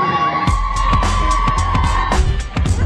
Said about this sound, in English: How about that crowd? Attendance 23. Yeah. Friends and family only. It's about all you hear.